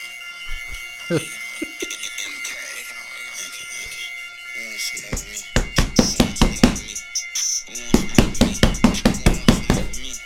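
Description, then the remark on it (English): A rapid series of loud, heavy bangs like someone pounding hard on a door, starting after a quieter opening and continuing in an uneven, insistent rhythm for several seconds. “Is that how you're knocking on the door? Banging it like it's police, bro.”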